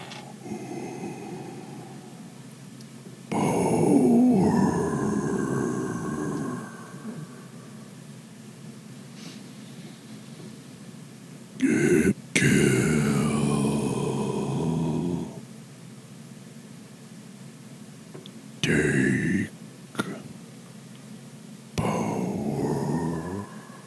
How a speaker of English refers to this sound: He comes for you. And then you hear that deep breathing that you heard so long ago. By so long, I mean like probably 3 weeks, but hey, so long ago.